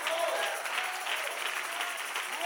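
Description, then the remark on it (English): An audience at a church service claps their hands in a dense, continuous wash of applause, many overlapping claps blending into a steady roar that fills the whole stretch without pause. “Clap your hands.”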